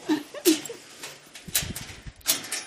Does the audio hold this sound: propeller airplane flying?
no